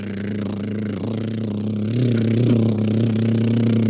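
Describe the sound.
A steady, low droning hum made with the mouth, imitating a boat engine, with a slight rise in pitch and loudness midway through; fairly loud, with no talking.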